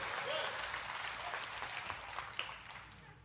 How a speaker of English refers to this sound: Come on, somebody give the Lord a hand clap of praise at all of our campuses. Woo!